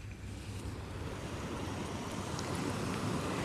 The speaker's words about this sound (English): The predominant sound is the sea, quite definitely the sea. I'm hoping that there will be birds, but I can't actually hear birds. That's what I like to listen for. But in the background also, I'm aware of traffic noises.